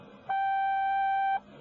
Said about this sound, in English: If your call is urgent, please leave your name and number, and one of our representatives will get back to you as soon as possible. You will have exactly 10 seconds after you hear the little beep.